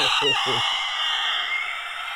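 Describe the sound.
A voice imitates a Nazgul scream: a loud, shrill, rasping screech held steadily for about two seconds, opening with a few short low guttural bursts.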